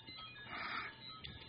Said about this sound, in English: I'm concerned about your ringtone. That's awful, right? It's in the background. Sorry about that. I don't have the phone's across the room, so... It's an awful ringtone.